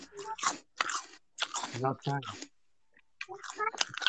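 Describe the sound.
Loud crunching as someone bites and chews a crisp apple, with several sharp bursts in quick succession, a brief pause, then more crunchy chewing mixed with faint mouth and voice sounds.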